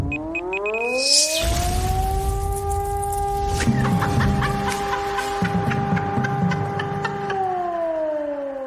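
An air raid siren winds up into a loud, steady wailing tone that holds for several seconds before starting to fall, with faint rhythmic clatter underneath and no talking.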